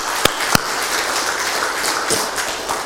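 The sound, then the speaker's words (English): A church audience breaks into applause for the Lord after meeting its missions giving goal, a steady, dense wash of many hands clapping at once, with a few sharper, louder claps standing out from the crowd. No one speaks over it. “So maybe we need to give the Lord a round of applause.”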